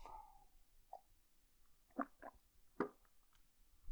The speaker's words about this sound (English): And let me just get a sip of water here quick as I'm moving through this.